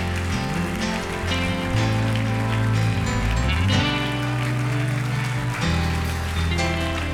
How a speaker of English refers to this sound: Come on, clap. I'm finished.